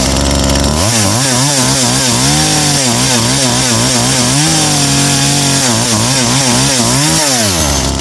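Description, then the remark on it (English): A loud chainsaw roars steadily as it cuts through a wooden door, its engine pitch repeatedly revving up and dipping in a rough rhythm as it bites and strains, with gritty cutting noise throughout and no voices. “And he's carving through the door to try and get to this guy to rescue him.”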